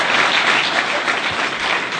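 audience applause

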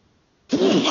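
sneeze

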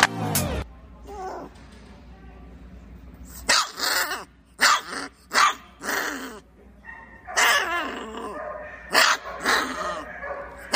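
puppy barking and growling

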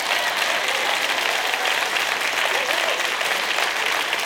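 audience applause

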